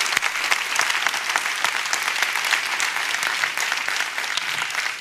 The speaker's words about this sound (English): Let's all stand. If the word of God helped you today, give God a big hand clap and a big shout. That's not big enough. If God's word helped you today, give a big hand clap and a big shout.